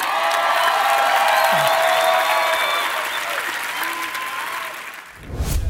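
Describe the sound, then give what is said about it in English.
Sustained applause from an audience, a dense wash of many hands clapping at steady loudness, tapering off near the end as it gives way to a brief low rumble. “Those claps are dick for what I just said.”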